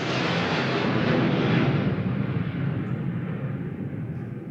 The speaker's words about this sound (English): I know that you heard that because I heard it through my headphones. That was a fucking plane getting a little bit too close. It's only happened a few times since we've been here, but there is a private airfield not that far from here.